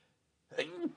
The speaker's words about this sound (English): God bless you. Thank you.